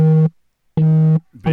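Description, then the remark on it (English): A loud electronic phone tone beeps in three short, evenly spaced bursts with brief gaps of silence between them, a buzzy, steady pitch heard alone with no voices. “Big's getting a phone call.”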